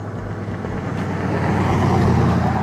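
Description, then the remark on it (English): Steady low rumble of cars driving by, swelling louder toward the end as a vehicle passes, with some wind buffeting and no voices. “As these cars ride by, you know, coming from richer, bigger neighborhoods than we ever seen in our motherfucking life.”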